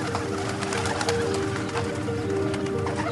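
Pigeons or doves cooing steadily, their soft, throaty calls repeating over a dense bed of background chatter and rustling, continuous throughout.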